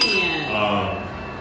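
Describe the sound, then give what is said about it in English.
A bright bell sound effect rings out with sustained, shimmering high tones that hold steady and slowly fade over about a second and a half, with no voices over it. “Can he get a couple bells?”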